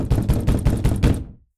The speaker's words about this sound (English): The loud knocking turned to pounding.